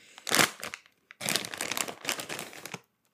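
A bag of barbecue-flavored Cheetos is crinkled and pulled open, with bursts of crackly plastic rustling in two main stretches separated by a brief pause.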